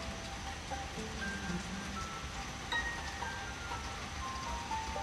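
Steady rain falls in a continuous, even hiss that stays fairly loud throughout, with a few faint, scattered tones sounding over it. No one speaks.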